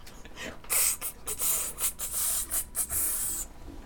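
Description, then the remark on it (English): A voice imitates a snake with a long run of sharp, breathy hisses, pulsing in quick rhythmic bursts for about three seconds, with no words spoken. “Everyone doing snake jazz today.”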